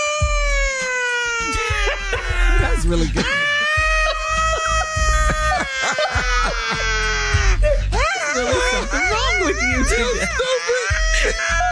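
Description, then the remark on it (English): A voice imitates a police siren, holding a loud, long wailing tone that slowly slides downward, then switching to a rapid up-and-down warble. A few spoken words break in briefly. “Would you rather make siren noises during sex”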